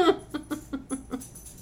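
A dog named Jax licks at the table in a quick, wet rhythm, about half a dozen soft smacking laps spaced evenly over a second or so, with no talking.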